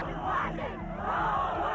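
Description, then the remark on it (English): A dense, roaring mass of shouting voices from a crowd in a gay riot as police move out into the crowd flailing about, loud and continuous for the whole stretch, with overlapping yells swelling and churning without any pause. “The police are now moving out into the crowd. Moving out into the crowd and just flailing about.”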